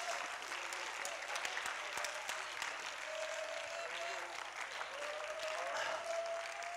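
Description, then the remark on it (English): An audience claps together in steady, dense applause, a continuous patter of many hands at moderate loudness with faint crowd murmur and a few voices underneath. “Come on, clap your hands, church.”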